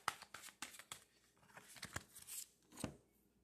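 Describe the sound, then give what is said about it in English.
Crisp papery snaps and rustles of tarot cards being shuffled, coming in quick irregular bursts for a few seconds with no talking. “I'm going to shuffle these up real good.”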